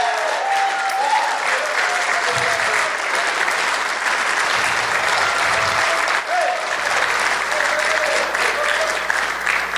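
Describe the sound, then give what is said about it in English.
An audience applauding the Lord in praise, a dense, continuous wash of many hands clapping at even loudness throughout, with scattered voices calling out underneath. “I like your continued prayer, praise, applause to the Lord, shout to the Lord, praying in the Holy Ghost.”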